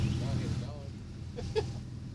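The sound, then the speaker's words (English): Short human whistles, blown to flag people down, cut through a low rumble of background noise: a wavering, warbling whistle early on, then a quick, sharp high chirp near the end, with faint voices underneath. “Those whistles are going to make great radio.”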